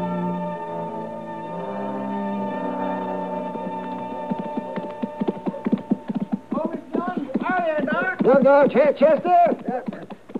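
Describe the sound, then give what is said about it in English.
The hooves of a good-looking horse ridden by Chester clip-clop in a steady rhythm, growing louder as it approaches, as sustained music fades out beneath them. “It's a good-looking horse Chester's riding, Matt.”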